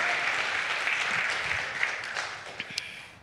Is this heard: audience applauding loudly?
yes